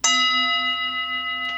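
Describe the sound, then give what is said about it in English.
A single bell is struck, its bright metallic tone and shimmering overtones ringing out clearly and sustaining with only a gentle fade, with no one speaking. “As this bell was rung, There's something that happens in that”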